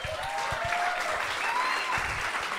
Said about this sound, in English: Do not clap for that motherfucker.